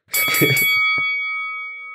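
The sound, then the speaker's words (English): A bell is struck once or twice in quick succession, then its bright metallic tone rings on, slowly fading over a couple of seconds. It is fairly loud, with no talking. “And ring the bell, too.”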